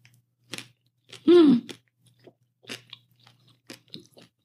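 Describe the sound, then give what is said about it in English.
Crunchy chewing on a baked noodle topping: a series of crisp, irregular crunches, with a short voiced murmur of enjoyment partway through. “I'm eating. How does this sound?”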